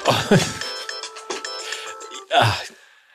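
A phone ringtone for an incoming call plays a steady, musical tone pattern for a couple of seconds, clear, with brief bursts of voices or noise at the start and near the end.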